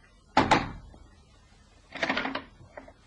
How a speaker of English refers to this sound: He walked to the house off Hanover Square and knocked twice on the door.